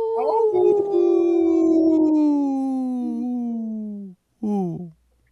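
A wolf howls in one long, loud, steadily falling note lasting about four seconds, then lets out a second, much shorter howl after a brief pause. No voices are heard.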